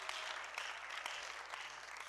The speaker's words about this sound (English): Oh, somebody clap your hands and shout amen this morning. Hallelujah, hallelujah.